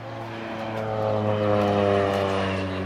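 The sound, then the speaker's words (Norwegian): A small propeller plane drones overhead above a farm field in South Africa, with a steady, buzzing engine hum, its tone holding level as it passes and grows slightly louder midway, with no talking. “Under intervjuet så kommer det et småfly over åkeren.”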